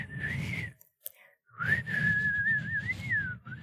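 A man 20 miles away whistles a wavering tune in two phrases separated by a short pause, the thin tone sounding muffled and far off over a low, rumbling background noise, as an ambient track for falling asleep.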